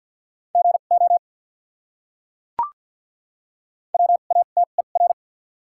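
Rapid Morse code at 50 words per minute with doubled character spacing, sending common English words, in a steady mid-high beeping tone keyed in quick dots and dashes. Two short bursts of characters are separated by a silent gap broken by a single sharp click. No voices.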